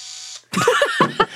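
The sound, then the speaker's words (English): A power drill whirs briefly with a steady motor whine, then cuts off. Right after comes a burst of louder, voice-like sounds that may be someone imitating the noise. “You know what it is? It's a drill.”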